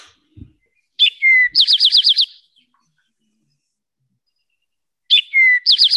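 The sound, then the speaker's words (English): An eastern towhee, also called rufous-sided towhee, sings its "drink your tea" song twice, each phrase a couple of sharp introductory notes followed by a fast, buzzy trill, with a few seconds of quiet between songs; clear. “But it says, drink your tea. And then every so often it'll say its name, towhee.”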